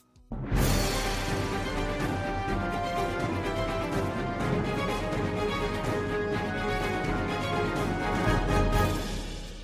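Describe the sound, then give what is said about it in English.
A loud news jingle bursts in abruptly, introducing a look at news stories in the Metro, a free newspaper, and plays for about nine seconds, a dense, full-band wash of music with steady sustained tones, no voices, ending with a slight taper. “So we are going to look at some of the wonderful news stories that are in the Metro today. So let's do it. Play the jingle.”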